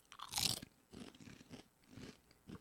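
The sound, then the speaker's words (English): A sharp, bright crunch as someone bites into a potato chip, followed by several softer, rhythmic chewing crunches at a steady pace, with no talking. “I hope I won't die eating this.”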